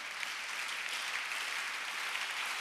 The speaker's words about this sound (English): I don't know why you're clapping, but I think I said something, isn't it? Yeah. I don't know. I don't know what I said, but. I was expecting a clap. I didn't get it.